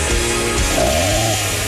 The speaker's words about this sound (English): Chainsaw Friday today.